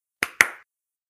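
Two sharp hand claps in quick succession, fairly loud, each with a brief ringing decay, followed by silence.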